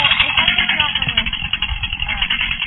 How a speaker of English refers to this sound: I'm sorry, I can't hear you over the chainsaw. Say it again.